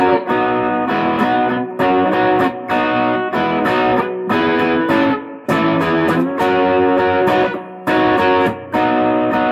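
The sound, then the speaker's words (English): A gritty electric guitar in open tuning, overdriven through an OD3 pedal with drive and tone at about 12 and the Bruce pickup's tone slightly rolled off, plays chunky chords in a loose, rhythmic pattern, with sustained harmonic-rich tones broken by short gaps and sharp pick attacks, alone at a steady, loud level. “Drive and tone on the OD3 at about”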